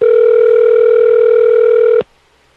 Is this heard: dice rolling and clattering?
no